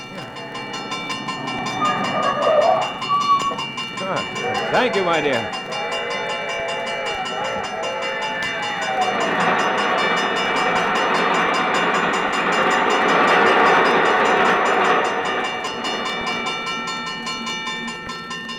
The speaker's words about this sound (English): There's the bell. Huh? What's that, my dear? There's a train coming. Oh, yes.